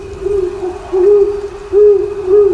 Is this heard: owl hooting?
yes